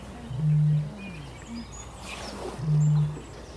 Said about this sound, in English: That was it. That was the booming bittern. What a great noise.